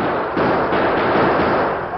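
A loud, dense barrage of rifle and six-gun fire from Hilltop House at approaching Indians. The shots blur into one continuous crackling roar that holds steady for about two seconds, with no talking.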